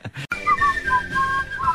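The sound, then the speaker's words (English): Someone whistles a short melodic tune, a string of clear, sliding notes rising and falling over a low background hum, with no speech. “I can't stand whistling.”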